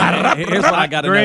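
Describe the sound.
A voice imitates a truck's jake brake: a loud, buzzy, growling drone in about three connected bursts, its pitch wavering up and down for just over a second.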